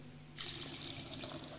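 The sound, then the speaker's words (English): Water suddenly starts pouring in a steady, splashing stream, like liquid running continuously into a basin, loud with no voices; it is a never-ending water trick shown during a Sunday church service. “So, this never-ending water is a trick.”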